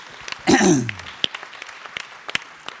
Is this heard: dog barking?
no